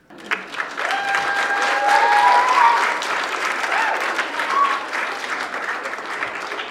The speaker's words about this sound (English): And I'll just go ahead and insert our celebration applause there because we all know how absolutely thrilling that is.